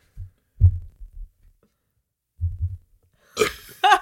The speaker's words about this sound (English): Sorry, I had to burp, but that's okay. You know, it's a natural thing. It happens to everyone. I gotta do it again.